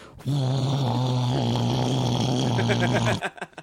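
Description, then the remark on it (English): A voice hums a steady, low, buzzing drone for about three seconds, imitating the constant engine noise inside an airplane cabin, then breaks off abruptly with a few soft clicks. “Nobody can hear shit on an airplane. It's all you can hear on an airplane is...”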